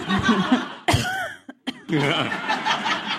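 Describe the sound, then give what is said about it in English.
A person coughs a few times in short, sharp bursts, mixed with chuckling and laughter before and after, with a brief silent pause in the middle. “Okay, my fact this week is that there is only a 1 in 800,000 chance that nobody will cough during this podcast recording.”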